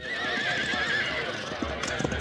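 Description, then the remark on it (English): A horse whinnies in a long, wavering cry over a noisy, crowded background, followed by a few sharp hoof clops as horses move, while cowboys ready the horses for a trail drive to Abilene. “All right, stop busting them horses into Bermuda.”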